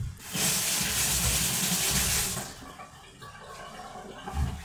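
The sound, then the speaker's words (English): A faucet gushes loudly for about two seconds, a steady splashing hiss as cold water runs over a hand scalded by boiling water, then eases to a quieter trickle with a soft splash near the end. “Run your hand under cold water.”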